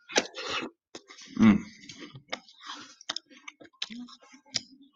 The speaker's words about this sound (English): Granny Smith apples are the best. I'm sorry if you could hear me chewing. I apologize.